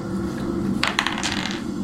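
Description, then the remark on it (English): Dice tumble and clatter across a hard tabletop in a quick burst of sharp rattling clicks lasting under a second, over a steady low background hum. “Go ahead and give me a roll.”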